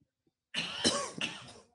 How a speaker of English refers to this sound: Mutual. Good cough.